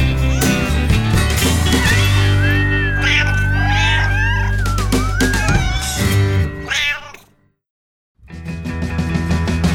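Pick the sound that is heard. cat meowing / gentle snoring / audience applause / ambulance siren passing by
cat meowing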